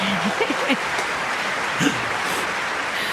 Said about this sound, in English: Can I get some choppy hand clapping? Yay!